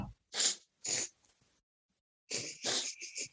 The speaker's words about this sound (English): I mean, I don't want a cough in your face with like a global pandemic going on, but I will give you a personalised sniff.